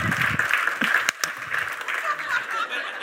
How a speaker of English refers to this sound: I don't know. Are we clapping or not?